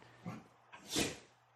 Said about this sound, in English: You sneezing there? No, it's the dog. I thought so.